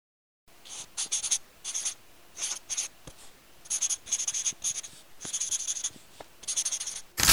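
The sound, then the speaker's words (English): A pencil scratches across notebook paper in quick bursts of strokes separated by brief pauses, with no voices, as someone writes a 10-page paper by hand. “Only a pencil and 10 pieces of notebook paper!”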